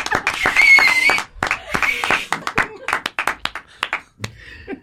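A burst of clapping with loud whooping and cheering, a strong sustained outburst at first that breaks into scattered, sharp claps and shouts before fading out.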